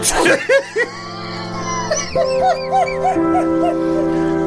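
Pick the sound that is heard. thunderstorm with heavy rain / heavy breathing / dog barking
dog barking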